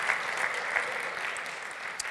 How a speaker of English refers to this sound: The next thing I want to say is that at midnight tonight, the mask mandate in Ontario is over. I knew some people would clap.